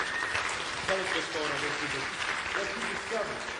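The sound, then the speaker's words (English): Steady audience applause for a woman called up to speak, a dense wash of clapping with some voices murmuring underneath, sustained at an even level throughout. “Give my wife a hand, a applause.”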